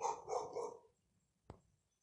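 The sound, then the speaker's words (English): A dog lets out one drawn-out bark, then falls quiet before a single sharp knock sounds a moment later. “Sometimes you just have to distract this dog from what he's doing.”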